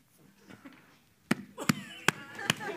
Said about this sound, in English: Okay, a couple claps.